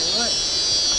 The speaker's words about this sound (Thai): เสียงด้วย เสียงอะไรอ่ะจักรจันทร์